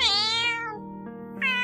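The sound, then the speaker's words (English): A black cat lets out a loud, squeaky, whiny meow, drawn out and falling in pitch, followed by a shorter rising meow, with no other sounds. “She was a purr machine and had a loud, squeaky, whiny meow.”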